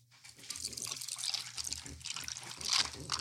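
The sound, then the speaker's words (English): An energy drink is poured over ice, a steady splashing trickle that builds and hisses for a few seconds, swelling loudest near the end. “Let's listen to the pour.”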